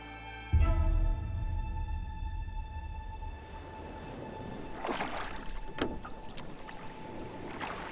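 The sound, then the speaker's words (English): Oars pull a single rowing boat carrying six people through water, with a steady low wash and a few sharp splashes from the strokes. No one speaks. “all six remaining treasure hunters fit into the single rowing boat with Ard, but Gustav was forced to put his backpack on his lap, which looked far from comfortable to Ludlow.”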